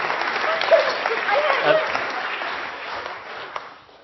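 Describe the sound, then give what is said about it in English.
An audience applauds a participant who has been spun and moved around the building, a dense, steady patter of many hands clapping at once that gradually thins and softens toward the end. “Okay, give her a big clap.”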